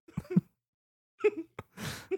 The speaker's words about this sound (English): Some coughs.